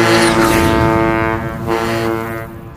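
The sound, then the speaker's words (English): A loud, steady boat whistle blows continuously with rich harmonic tones, swelling and dipping slightly over a few seconds before starting to fade, with faint rushing noise behind it. “Sounds like a boat whistle, Chief, but”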